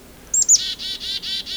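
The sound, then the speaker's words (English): A chickadee calls in the distance on Isthmus Bay Road, near Swan Lake Lane and the 40 Hills Road: two thin, high introductory notes followed by a run of four or five buzzy, evenly spaced "dee" notes, clear, with no voices. “I'm starting to hear a chickadee in the distance.”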